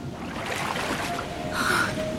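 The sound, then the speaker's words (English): A boat carrying two people toward the Orkney Isles pushes through choppy water, with a steady wash of splashing and rushing surf that swells briefly near the end, no voices present. “Day turns to night three times over as the duo struggle on through the water, wasting not a second of time”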